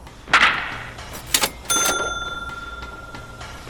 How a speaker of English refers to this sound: Yeah, whenever you hear that cash register ring, it means Aaron Judge has just hit another ding.